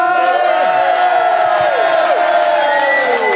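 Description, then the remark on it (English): A live show audience shouts "ho ho ho" together for Christmas, a loud, dense mass of voices holding steady throughout, with several pitches sliding downward as the shout carries on. “There we ho-ho-ho'd.”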